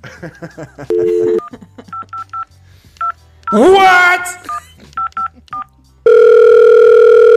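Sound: telephone dialing and ringing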